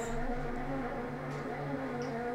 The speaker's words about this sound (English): And like the bee is way too loud, guys. The bee is way too loud, guys.